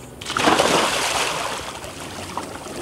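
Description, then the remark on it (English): A person jumps off a boat, backed up to a beach, into shallow water with one loud splash that washes out into fading sloshing and trickling water, with no talking. “So I'm just gonna go ahead and jump in.”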